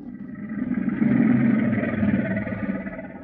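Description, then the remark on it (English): Two crocodiles roaring: a deep, rough, rumbling growl that swells after about a second and holds steady for roughly three seconds, loud and continuous with no talking. “That's a couple of crocodiles roaring.”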